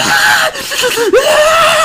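Children screaming and shrieking outside as they get off a school bus, high wavering voices in a continuous overlapping chorus of excited yelling with brief dips, fairly loud, no clear speech.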